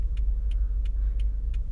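Steady, deep rumble of a car's engine and road noise from inside the vehicle, loud and unbroken, with a faint, evenly spaced light ticking about three times a second on top.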